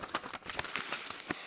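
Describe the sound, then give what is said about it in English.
Paper being crumpled by hand to mimic a crackling fire: a steady run of dry, irregular crackles and rustles at moderate loudness, with a few sharper pops and no talking. “There's your fire. There's your crackling fire.”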